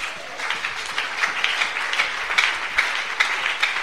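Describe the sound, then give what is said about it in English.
A crowd claps for the Lord, steadily and fairly loudly for a few seconds, a dense wash of many hands with occasional sharper claps standing out, no voices over it. “Somebody clap for the Lord.”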